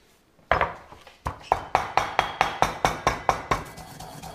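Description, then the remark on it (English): A pestle pounds spices in a mortar, muddling and banging them toward an almost powder consistency: a steady series of about a dozen sharp, hard knocks, brief grinding scrapes between strikes, no voices. “And then a mixture of muddling and banging will really take this to sort of almost like a powder consistency.”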